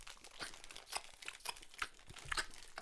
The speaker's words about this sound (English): Can you guys hear me opening my candy? Yeah. Oh, it's so... Oh, my God. for you ASMR lovers out there.